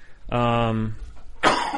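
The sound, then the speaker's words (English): A loud bout of coughing: a long, voiced, throaty cough followed by a short pause and then a sharp, harsh burst, with no talking. “Sorry about my coughing, everyone.”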